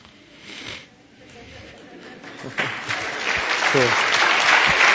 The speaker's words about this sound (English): Once again, they're clapping for Him, not for this guy.